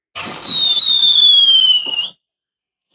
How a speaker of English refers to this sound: Let the fireworks rain.